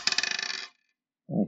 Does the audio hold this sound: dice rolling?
yes